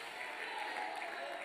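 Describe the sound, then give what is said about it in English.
An audience claps their hands together, one more time before being seated, in a steady, dense wash of applause that holds an even loudness throughout, with no distinct individual claps standing out and no clear speech. “One more time before you're seated, can you clap your hands?”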